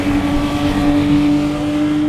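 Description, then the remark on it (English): A car engine roars hard, holding a loud, steady high-revving drone with a strong tonal whine throughout, with no voices over it. “Keep gassing. There he goes.”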